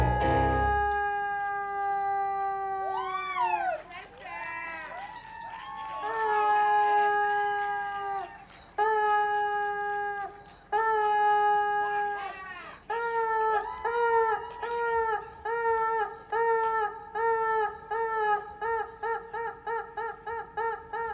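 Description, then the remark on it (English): A rubber chicken toy squawks loudly and shrilly, starting with long wailing squeals, then short honks that repeat faster and faster in a rapid rhythmic run. No voices. “I don't allow no rubber chicken, rubber chicken solo.”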